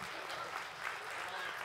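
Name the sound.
audience applause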